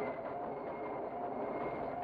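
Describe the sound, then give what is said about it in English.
Scratchy, muffled old vinyl recording of steam trains in Paris: a dense, steady rumble and hiss of rolling wheels and machinery that stays loud and continuous throughout, with no voices. “So, these scratchy recordings of steam trains in Paris are the first use of something pretty much all modern music takes completely for granted.”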